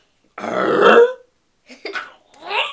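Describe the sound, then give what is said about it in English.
A person imitates a grunt: one loud, gravelly vocal grunt lasting about a second, followed by a couple of shorter, quieter throaty sounds. “Can you do the Tim Allen grunt?”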